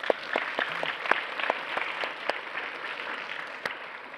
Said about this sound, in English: Shall we give the Lord a clap offering?